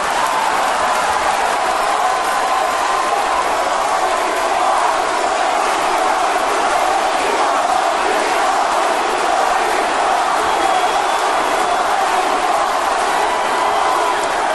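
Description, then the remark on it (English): A large crowd chants and shouts together, half chanting "Rocky" and the other half chanting "lady parts", a loud, dense wall of many voices that holds steady for about fifteen seconds with no single speaker standing out. “We got half the crowd chanting Rocky and the other half chanting lady parts.”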